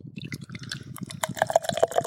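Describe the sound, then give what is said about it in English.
Beer glugs into a glass, a steady bubbly gurgle for about two seconds, with a brighter, rising fizzy tone in the second half as the glass fills. “So, do y'all want to hear this pour?”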